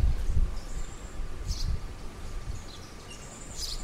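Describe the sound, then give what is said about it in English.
A few short, high sparrow chirps sound outdoors by a sidewalk, scattered irregularly over a low rumble of wind and rustling ambience, with no one speaking. “What kind of bird? There you go. The fucking hey, sparrow.”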